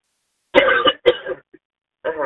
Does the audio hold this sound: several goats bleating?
no